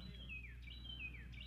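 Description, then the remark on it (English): Clear, repeated bird chirps, each a high whistle sliding downward, sounding about twice in a steady rhythm over a low, constant background hum outdoors at a Saturday-morning ball game in cold but beautiful weather. “The sound bites we get from this game, by the way, are awesome. We get birds, we get dogs, we get absolutely beautiful weather too.”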